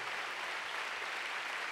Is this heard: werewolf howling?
no